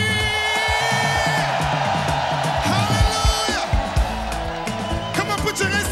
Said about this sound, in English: Somebody scream.